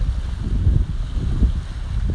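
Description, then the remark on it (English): Sea water washing at Fort Myers Beach around dusk, a steady low rumble of surf that swells and eases without pause, mixed with wind buffeting the microphone. No one speaks. “I'm wondering if you can hear the sound of the water.”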